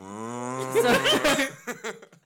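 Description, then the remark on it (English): A person imitates a cow with one long, low, drawn-out moo that swells in loudness, then breaks into a few short, choppy vocal bursts before fading out. “The comical timing of my moo was, I'm sorry, genius.”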